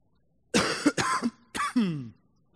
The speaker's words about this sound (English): My cough is worse than I expected.